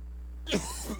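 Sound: coughing fit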